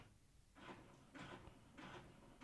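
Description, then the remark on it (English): A printer aligning itself after printing whirs in three short, evenly spaced mechanical bursts, a carriage sliding back and forth at moderate volume, with no voices. “Y'all hear that? That was my printer. Okay. It was aligning itself, I guess.”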